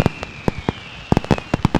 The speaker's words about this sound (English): As a side note, when are y'all gonna be done with the fireworks? Y'all been popping them since Memorial Day.